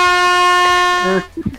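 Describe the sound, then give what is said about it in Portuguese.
A loud, sustained air horn blast holds one steady brassy tone for just over a second, then cuts off as a voice briefly speaks. “Se defendendo da buzina, isso nunca vi na minha vida.”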